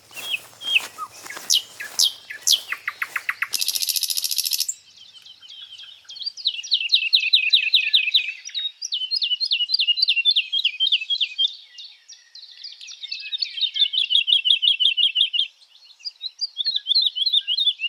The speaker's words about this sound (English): The birds sing in the canopy above, and I'm starting to learn their calls.